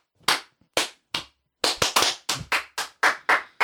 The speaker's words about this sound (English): These are perfect claps. I clap perfect every time. That was really loud on your mic.